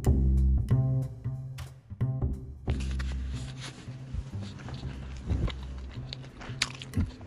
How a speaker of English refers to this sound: I'm eating breakfast. I just had pork tenderloin, and now I'm eating breakfast.